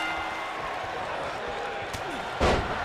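A single heavy thud of a wrestler's headbutt knocking the Undertaker down on the Tim Zabriskie Show, landing near the end over a constant roar of arena crowd noise.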